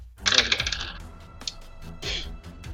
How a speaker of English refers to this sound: And, sorry, dice all fell off my table.